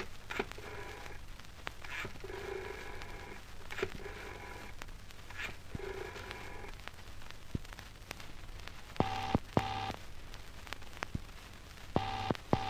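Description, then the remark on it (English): A telephone call to the Clarion newspaper being dialed: a series of short clicking pulses, then paired electronic ring tones, steady and mid-pitched, repeating over a faint hiss with no voices. “Right, I'm going to ring him up. It's all right. I know the number.”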